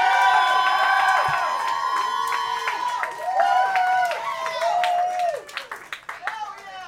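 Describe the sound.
A crowd votes for a show's February 2019 champion, cheering and whooping loudly while clapping continuously, with many overlapping shouting voices rising and falling in pitch, the noise staying dense and sustained before thinning slightly toward the end.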